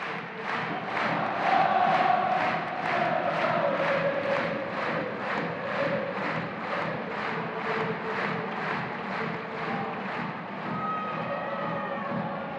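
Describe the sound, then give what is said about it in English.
A huge football crowd sings in unison in the stadium at the final home league game of the season, with three and a half minutes to go. The chant is loud and sustained, with a steady pulsing rhythm and massed voices holding the tune throughout. No single voice stands out. “3.5 minutes to go, and they're singing their socks off.”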